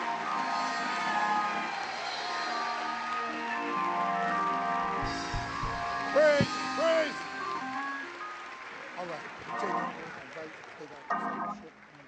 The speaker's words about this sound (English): We giving a sounding, rounding applause for our youth. Come on. Give it up. Give it up. Give it up.